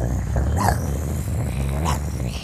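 dogs growling and barking

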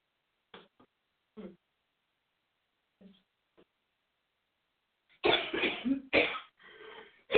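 coughing and throat clearing

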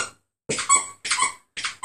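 squeaky dog toy

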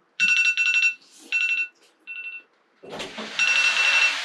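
alarm ringing

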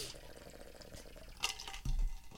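drinking water

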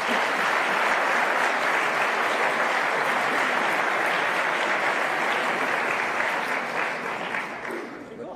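round of applause

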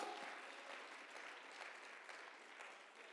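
audience applauding

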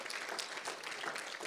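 audience clapping hands

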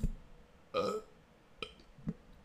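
burp

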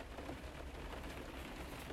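rain falling

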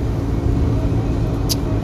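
car driving

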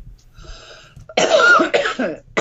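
coughing

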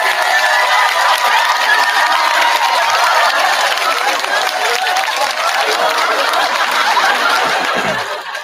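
applause and cheering

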